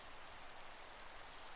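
Steady rain falls in a soft, continuous hiss with no distinct drops standing out. It stays even and fairly quiet throughout, with no voices or other sounds.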